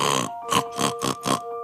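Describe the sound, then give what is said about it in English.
A person imitates a pig with a quick series of about five rough, nasal snorts in a steady rhythm, over a faint steady hum. “And for pig, we can either do the classic snort”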